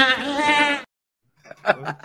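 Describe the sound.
A person does a loud, quavering goat bleat lasting under a second, then after a short silence someone briefly talks.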